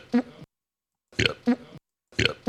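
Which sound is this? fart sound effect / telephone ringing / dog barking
fart sound effect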